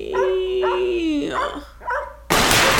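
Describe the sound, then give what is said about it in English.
A dog named Marshy, out in its yard with a toy, lets out a drawn-out, whining bark followed by a few short, sharp yips, ending abruptly in a loud burst of rushing noise. “Are you barking at a person?”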